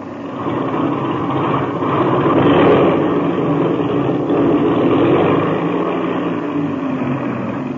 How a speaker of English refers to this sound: I'll run up the engine to be sure it's turning over okay.